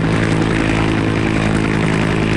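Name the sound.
helicopter rotor sound effect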